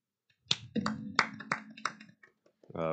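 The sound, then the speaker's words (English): Bare butt cheeks are slapped together like clapping: about five sharp, fleshy smacks at an uneven pace, with a voice murmuring underneath and a short vocal sound at the end. “Those were my cheeks, my butt cheeks.”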